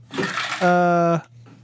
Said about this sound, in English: Well, first off, my water bottle just fell off the desk and I caught it and it was amazing.